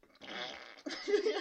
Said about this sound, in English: A little bit of funeral flatulence. That should be a name of an album. Or like a TV show. They just put mics under all the chairs at funerals, and then they just record all the farts.